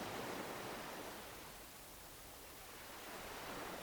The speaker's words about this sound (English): The sound of soft ocean waves moving against the nearby shoreline washes away every anxiety and stress that your mind has been holding onto.